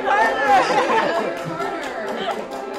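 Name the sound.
crowd chatter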